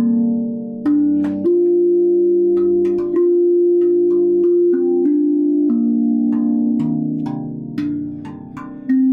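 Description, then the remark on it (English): Ringing metallic tones from a steel-drum-like instrument play a slow, flowing melody, each note struck cleanly and sustained into the next, close and fairly loud with no voices. “It's basically like a reverse steel drum. And it's just the tones, man.”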